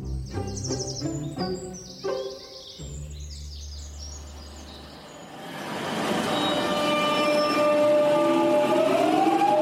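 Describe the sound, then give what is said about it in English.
Train ride ambience on a train into Westminster on a Thursday morning: a few bright chiming tones and a low hum give way to a steady rolling rumble with a rising electric whine as the carriage gets moving. No one speaks. “So I was on the train into Westminster on Thursday morning, and I was tired.”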